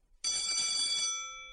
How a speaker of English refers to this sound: Close. That's the school bell.